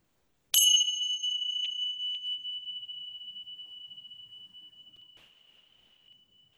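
A single meditation bell is struck once, ringing clear and bright, then slowly fades over several seconds into silence. No voices are heard.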